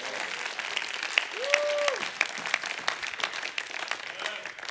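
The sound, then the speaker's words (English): A crowd applauds with dense, steady clapping, while a brief held note or shout rises over it partway through and a fainter vocal tone returns near the end. “Come on, somebody clap.”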